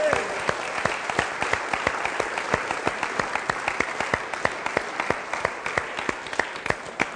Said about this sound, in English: Give her a little clap. Thank you.